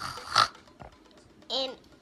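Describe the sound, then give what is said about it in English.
A child's voice imitates a pig, giving two short nasal oinks about a second apart, fairly loud, with quiet background between them. “My name is …. I'm a pig.”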